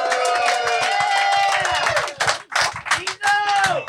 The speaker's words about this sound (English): Awesome, awesome. Y'all did a fantastic job of clapping for a nigga you never saw before. I think that's beautiful.